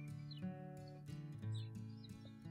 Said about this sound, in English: And then one day, on a drive, I heard a bird song. And it changed me.